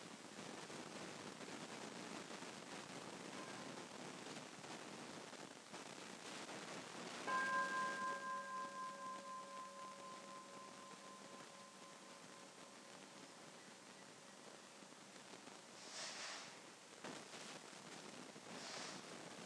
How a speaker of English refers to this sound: So maybe we can listen to a sound of the bell and practice this way for a few breaths.